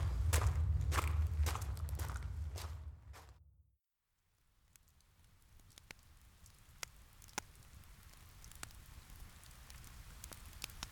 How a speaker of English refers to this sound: Glad we found this outcrop. I was not looking forward to sleeping in the rain again.